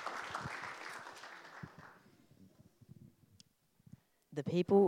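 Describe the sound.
A crowd claps for about two seconds, a dense burst of applause that thins into a few scattered claps and fades out, followed by a voice beginning to speak.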